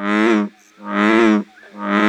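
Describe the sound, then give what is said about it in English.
A bullfrog calls three times in steady succession, each deep, resonant, droning note lasting about half a second with short pauses between, loud with no other sounds. “In June, expect to hear in Brown County, bullfrogs would probably be most conspicuous.”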